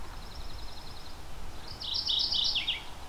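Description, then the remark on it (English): A mourning warbler sings: first a faint, rapid series of high chirps, then a louder burst of bright, slightly descending warbled notes over steady background noise. “So a note about the name on this, this is morning warbler as in mourning a loss or death, not as in the first part of the day.”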